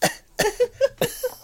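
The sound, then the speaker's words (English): A person imitates a woman's fit of coughing: three or four harsh, breathy hacks in quick, uneven succession, each trailing into a short voiced groan, fairly loud. “And then she coughed like this.”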